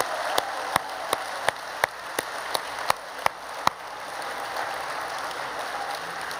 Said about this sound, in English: So I want all the dads and granddads to stand up right now. We're going to start with recognition. Come on, stand up. Get your applause.